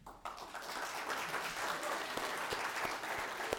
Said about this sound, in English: We'll clap real quiet for you guys. I don't want to unsettle you guys at all.